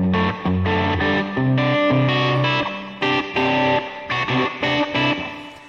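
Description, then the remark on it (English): An electric guitar played through echo and delay effects plays a run of bright, sustained chords and notes, each phrase ringing out and repeating with an echoing, slightly distorted tail; no one speaks. “I love playing with echoes, delays.”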